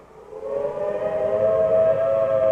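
A civil defense air raid siren, a warning signal to take shelter before enemy planes arrive, winds up and then holds a loud, steady wailing tone with strong overtones, sounding alone without any voices.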